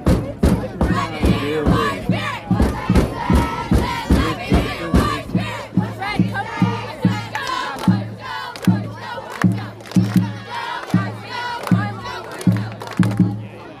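A large football stadium crowd chants in unison during a game, loud and sustained, with a steady rhythmic pulse of voices and stomping or clapping driving the chant throughout.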